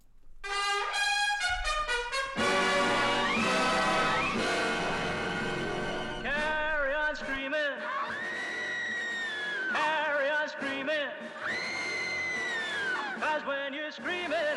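The bright 1960s-style pop theme song from the beginning of the film Carry On Screaming opens with quick staccato stabs, then full band and a male singer crooning with vibrato, loud throughout.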